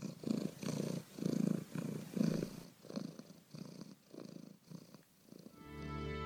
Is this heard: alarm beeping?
no